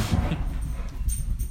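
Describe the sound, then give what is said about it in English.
A dog whimpers and snorts in short, scattered bursts over a low background rumble, with no one talking. “Are there multiple dogs here?”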